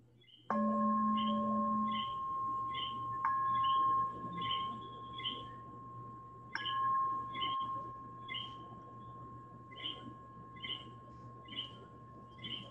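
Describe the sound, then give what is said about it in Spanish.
Small coquí frogs of Puerto Rico call at night in a steady outdoor chorus, short high chirps repeating every second or so, while a clear ringing tone sounds three times and lingers over a low background hum. “No son pájaros, son coquíes, son ranas que cantan.”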